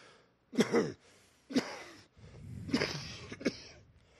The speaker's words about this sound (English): You going to be all right there? That's the last part of this fucking cough. Yeah, it's not as bad as it has been. No, it's getting better.